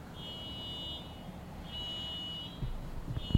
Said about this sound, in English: Okay. Somebody's car alarm is going off. That's pretty irritating.